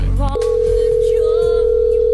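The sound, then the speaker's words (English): A telephone ringing tone of a call being placed to a man's wife starts after a short pause and holds as one steady, unbroken electronic hum, loud, with low rumbling background noise beneath it. “It's ringing.”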